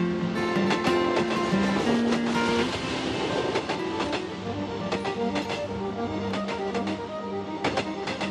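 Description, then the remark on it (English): A train rumbles steadily along the rails on the way to Spain in 1922, with a rhythmic clickety-clack of wheels over track joints and a low mechanical hum underneath, continuous throughout. “Imagine Patrick's train thoughts on the way to Spain.”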